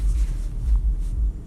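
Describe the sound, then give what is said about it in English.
Heavy bass music blasting from a car at a Lowe's thumps loudly as a deep, rumbling low-end beat pulsing unevenly, with little else audible above it and no voices. “Why is that guy blasting his music so loud? Pretty sure you guys heard that.”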